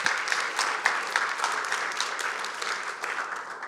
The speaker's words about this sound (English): Let's give those folks a round of applause.